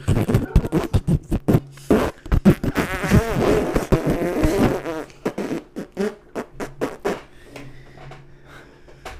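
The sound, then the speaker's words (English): A voice imitates liquid diarrhea with wet, sputtering mouth noises: rapid bursts of raspberry-like splatter, a longer buzzing spray in the middle, then sporadic wet pops trailing off, fairly loud. “It's all liquid.”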